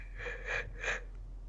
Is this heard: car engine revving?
no